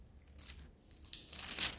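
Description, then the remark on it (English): Paper rustles and crinkles as a speaker gets his paper ready to read from Luke chapter 2, in a series of short, crisp bursts that grow busier toward the end, with a low hum underneath and no talking. “And give me a second here. Get my paper ready here.”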